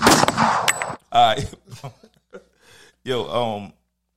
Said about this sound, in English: Give me the gunshots.